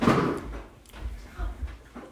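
A refrigerator door swings open with a muffled whoosh and thud as a water is taken out, followed by a few soft, low knocks as it is shut again, moderately quiet, with no talking.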